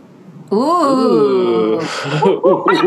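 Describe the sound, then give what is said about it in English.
People imitate primate calls: a long, loud, wavering hoot that slides up and down in pitch, followed by breathy huffs and a few short, choppy yelps. “We went, ooh, and then we transitioned into primate sounds.”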